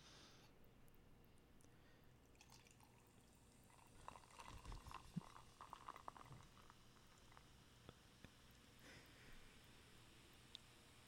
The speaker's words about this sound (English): All right, here we go. Pretty good. Sounds like a good carbonation.